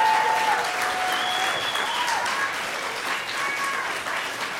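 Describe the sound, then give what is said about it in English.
A crowd claps steadily and loudly for several seconds, with scattered whoops and shouted calls rising above the dense applause. “It sounds like people are yelling angrily at us”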